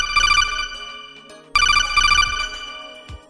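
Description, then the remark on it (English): A telephone rings twice in close succession with an incoming listener call, each ring a bright, trilling electronic tone lasting about a second and a half, loud, with no one speaking. “Yeah, man, we're back and we're taking a listener call. So how about we go back to those phones?”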